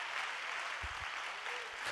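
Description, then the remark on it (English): An audience claps steadily for two seconds, a dense, even wash of many hands, with a couple of dull low thumps partway through. “Come on, if you're going to clap, somebody ought to clap.”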